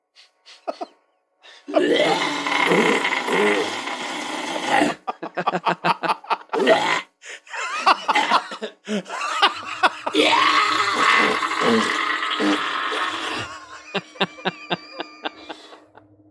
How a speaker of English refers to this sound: All right, so here's this guy assuming the position and giving us some screaming farts.